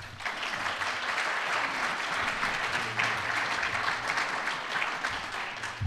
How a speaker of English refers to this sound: In order to get as much substantive debate as possible, we ask our audience to refrain from applause during the event, except at this moment where we welcome our four debaters to the City Club of Cleveland.